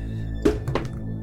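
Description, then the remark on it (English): Dice clatter down onto a surface in two quick bursts of knocking, with a faint rattle trailing off as they settle over a low, steady hum. “I dropped my dice, like, all over the place.”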